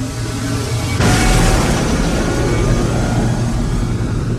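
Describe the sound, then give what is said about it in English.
A low rumble abruptly erupts into a huge, ripping roar, like the sky tearing open, then holds as a loud, sustained rushing thunder with deep booming undertones and no voices. “The sound of the sky being torn in half interrupts Fish's words.”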